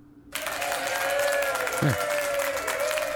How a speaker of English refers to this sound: Yeah. I appreciate that. All right, that's enough applause.